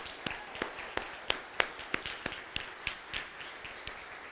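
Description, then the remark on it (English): Steady applause for a choir, made of about a dozen sharp, evenly spaced hand claps in a regular rhythm, moderately loud, with no voices over them. “I'm clapping for your dedication.”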